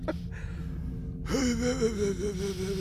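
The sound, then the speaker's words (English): A deep breath drawn in through the nose with a soft airy rush, then let out through the mouth as a long, audible sighing exhale that carries a faint hum of voice, during a deep breathing exercise. “Thank you for that deep breathing exercise.”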